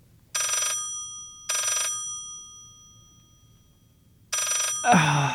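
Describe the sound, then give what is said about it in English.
A telephone rings three times in bright, tonal bursts with pauses between, clear; a voice starts speaking right as the third ring ends. “But when the phone rings at odd times, You know, what happens if you don't pick up the phone?”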